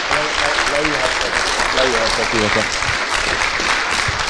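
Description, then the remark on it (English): A crowd claps steadily in a dense, continuous wash of applause, with a voice rising over it partway through as the clapping carries on to the end. “All right, let's give these guys a big round of applause again.”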